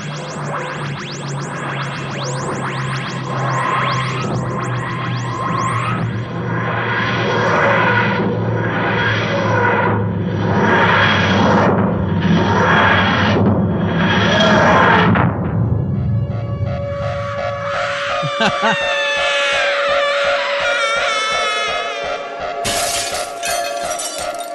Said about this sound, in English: Oh yes, I love it. I haven't heard that for a while. The rant jingle. Oh, we'll be needing that.